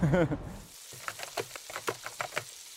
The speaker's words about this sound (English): Frying food scares me because it's boiling oil. I was terrified of the oil coming out of the pan and getting to my skin.